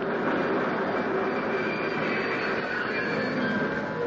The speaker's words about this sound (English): The train's coming.